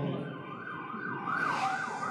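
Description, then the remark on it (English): A police siren wails with rising and falling sweeps over a steady wash of road noise, growing more prominent toward the end; no one speaks. “I just got a call on my phone and I hear sirens.”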